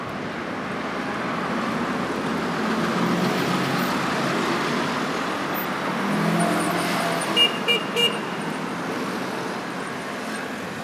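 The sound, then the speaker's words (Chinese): Steady street traffic rumbles throughout, with cars, motorbikes and bicycles passing on the road and a few brief tonal horn-like chirps near the end over the continuous road noise. “现在走到马路高头，听到最多的声音就是汽车声，帮着把摩托车还有自行车的声音。”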